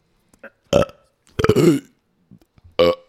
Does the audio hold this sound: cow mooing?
no